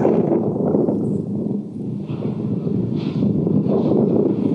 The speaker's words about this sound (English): Finally, we crested the lip of yet another small crater, and I saw this beautiful lake of lava. You can hear the wind blowing, sending waves of hot gases and heat that almost overwhelmed us.